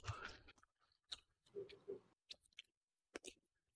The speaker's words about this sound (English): I'm eating almonds. Chew.